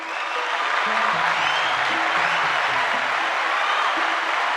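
A crowd claps steadily and densely for several seconds, a sustained wash of applause with a few low tones moving underneath.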